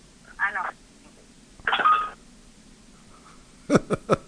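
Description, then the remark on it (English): Three quick phone keypad beeps sound in fast succession near the end, clear, after two brief muffled bursts of voice-like sound earlier on. “just mute your phone when you're not talking.”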